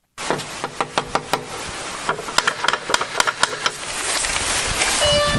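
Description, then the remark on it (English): A door being opened in police bodycam footage, heard as a rapid series of sharp knocks and clicks, followed by a swelling rush of noise as it swings open. No one speaks. “Anyway, here it goes from opening the door, I guess.”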